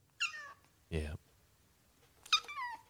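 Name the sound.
cat meowing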